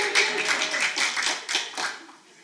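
A small group claps steadily for a couple of seconds for a 28th birthday, a dense patter of hand claps at moderate volume that thins out and fades near the end.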